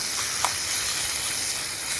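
Venison searing in a hot pan to brown it: a steady sizzling hiss that runs the whole time, with a few small crackles and pops, and no voices.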